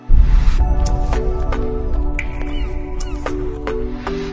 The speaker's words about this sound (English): I love the bird sound effects.